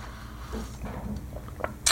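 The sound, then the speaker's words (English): Someone drinks a sip of water: faint wet mouth clicks and a soft swallow over a low hum, ending in a short, sharper burst. “I'm going to take a shot of water here.”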